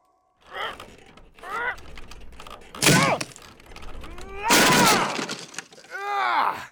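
A door is forced and broken down with a crowbar, with two loud splintering, crashing bursts between strained grunts and groans, and a final effortful groan at the end.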